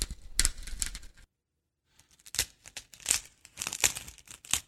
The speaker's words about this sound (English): And an ice cream cone being broken sounds like hatching eggs.